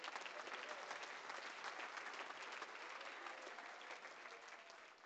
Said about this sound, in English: Come on, someone clap to him right now.